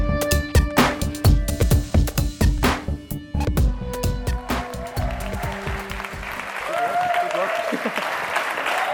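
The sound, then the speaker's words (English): A big round of applause from a church audience during a service, dense clapping that carries on throughout, with some musical tones ringing underneath early on before the clapping turns into a steady wash. “What a big round of applause.”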